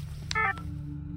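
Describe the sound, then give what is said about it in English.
A single short burst of bright electronic mobile phone ringing tones, framed by faint clicks, rises briefly over a steady low hum and then cuts off, leaving the background drone alone. “I did not wake again until my phone rang the following day.”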